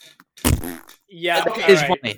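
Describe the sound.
A person makes a couple of loud mouth-fart noises: a short sputtering burst, then a longer, wobbling buzzy raspberry with a brief tail, all without any spoken words.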